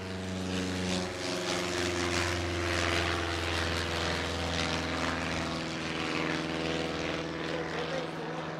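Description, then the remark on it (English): A propeller airplane drones steadily overhead, its engine a loud, constant low hum with layered tones that hold throughout without fading. “You would think there was an airport around here.”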